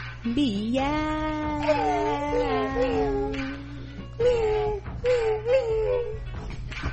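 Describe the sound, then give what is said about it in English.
Several people mimic cat meows with their voices, drawn-out rising and falling mews overlapping one another, fairly loud, over a steady low background hum. “Meow, meow, meow.”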